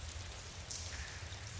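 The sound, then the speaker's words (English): Steady rain falls without pause, a soft continuous hiss over a low rumble, fairly quiet and even throughout, with no voices. “I hate the rain.”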